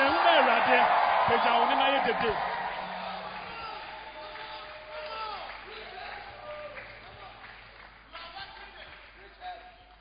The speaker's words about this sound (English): Are you clapping your hands for Jesus, somebody? Are you shouting? Are you clapping your hands? Are you blessing Jesus? Lift up your voice and shout.